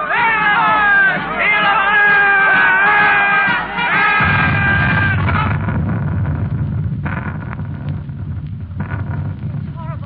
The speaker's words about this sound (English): Listen, soldiers, they're marching this way. The crowd cheering. For what?